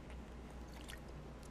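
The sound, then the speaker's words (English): Quiet sipping of water: a brief wet slurp near the middle, with faint liquid squishes over soft background noise. No talking. “Okay, sorry guys, time to sip the water.”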